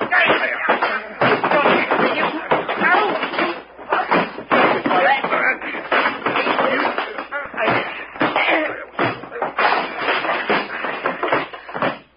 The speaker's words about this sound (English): One red engine bites the dust. Gee, that was a fight.